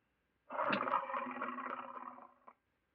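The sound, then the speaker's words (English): A single drawn-out dinosaur call sound effect, a loud, throaty roar with a growling, harmonic tone lasting about two seconds before it cuts off sharply, heard alone with no talking. “Hey, that sounds like a tiger. A tiger mixed with like a Pomeranian.”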